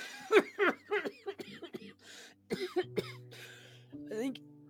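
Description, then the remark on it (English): A man gives a series of throaty coughs in short bursts, mixed with voiced, hacking sounds and brief pauses between fits. “He coughs.”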